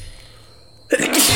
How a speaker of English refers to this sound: Bless you again. Thank you again.